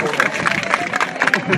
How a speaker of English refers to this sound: Yeah, you can give her a clap.